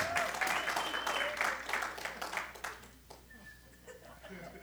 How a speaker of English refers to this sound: I know when I mention this other one, they're going to start clapping. But there's one that meets on Thursday night,